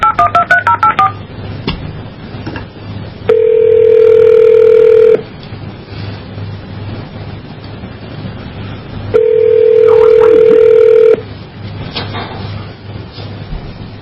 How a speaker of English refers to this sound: Okay, here's what I'm going to do. I'm going to call you on your phone, and I will try to redial you and answer, because I dialed a moment ago and you didn't answer, okay? I'll call you back.